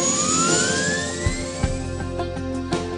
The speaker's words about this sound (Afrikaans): Kom verken die Namibiese kuslyn saam met my in een van die mees ikoniese gevegshelikopters wat ooit gebou is, die Huey.